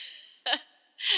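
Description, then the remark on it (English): Someone clears their throat in two short, rasping bursts separated by a brief pause, the second rougher and longer than the first, with no talking. “Yep, clear the throat.”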